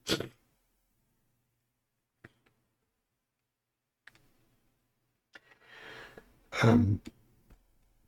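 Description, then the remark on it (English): A loud sneeze bursts out near the end, preceded by a short noisy burst at the very start; soft clicks and faint rustling fill the quiet stretch between. “Bless you. Bless you.”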